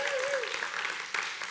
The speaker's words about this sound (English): Can I get a hand clap?